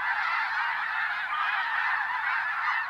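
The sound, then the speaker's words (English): A dense chorus of snow geese calling from a large flock of thousands migrating in autumn along North American flyways from their Arctic breeding grounds, countless overlapping honks blending into a continuous, steady clamor with no pauses and no voices. “This wild sound, some liken it to the baying of hounds, pours from the sky each autumn along all four North American flyways.”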